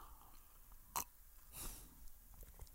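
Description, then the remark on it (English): A quiet sip of water: a sharp little mouth click, then a short soft slurp and swallow, with no talking around it. “and I'm speaking at 100 miles an hour, and I better stop and have a little sip of water.”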